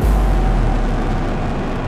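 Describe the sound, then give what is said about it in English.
A loud, steady rocket-launch roar at Cape Canaveral fills the whole stretch: a deep rumbling bass under broad, crackling noise that holds constant without a break and carries no voices. “And then as it gets closer to zero, there is this rumbling that comes from beneath the ground. And then this burst of fire. And an unbelievable noise as the rumbling turns into a roar.”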